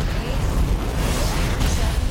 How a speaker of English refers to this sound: Mission control, we are go for launch. T-minus 10, 9. Main engine start.